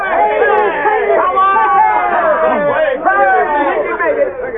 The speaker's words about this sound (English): Considering that bull boats were circular basins of buffalo hide stretched over a stick frame and not intended for open river navigation, they handled the bobbing, swinging craft with rare skill, putting in at the camp amid the yells of the men.